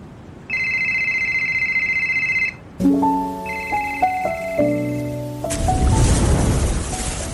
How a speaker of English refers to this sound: Answer that phone call.